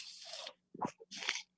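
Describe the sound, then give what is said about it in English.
Quiet slurping of bubble tea through a straw, followed by a couple of soft, wet chewing sounds, then another short slurp. No one speaks. “Just taking a sip of bubble tea.”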